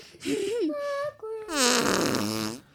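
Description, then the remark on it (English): A voice makes a loud, drawn-out fart noise, a wobbling pitched buzz that breaks off, then a longer, rougher, sputtering blast that trails away after a few seconds. “You were playing soccer and you farted so loud.”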